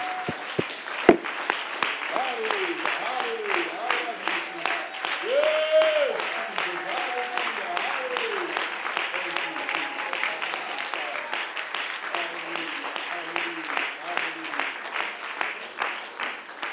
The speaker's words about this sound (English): Why don't we clap our hands?